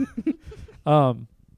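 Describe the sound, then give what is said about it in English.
A single abrupt, loud cough bursts out, lasting under half a second, following a few soft murmured vocal sounds and trailing into quiet breathing. “Sorry, I had to cough and it was abrupt.”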